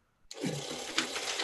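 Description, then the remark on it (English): A money gun, used in a celebration, kicks on abruptly with a loud mechanical whir, then sprays bills in a steady fluttering rush that continues without pause to the end. No one speaks. “First of all, I had to get the money gun for you, brother, because I wanted to celebrate you getting, first of all, you being a young brother, jet setting, going to Brazil, Dubai.”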